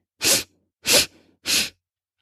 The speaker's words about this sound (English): Let's do three more. Ready? Three quick sniffs.